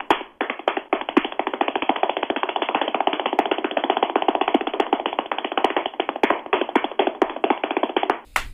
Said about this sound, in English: He just clapped 802 times. Yeah.